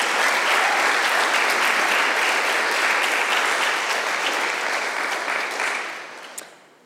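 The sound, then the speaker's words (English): A crowd claps steadily in a dense, continuous wash of applause that holds strong for several seconds, then thins and fades out near the end, with no voices over it. “So give me some applause right now, because we have to find ways to connect.”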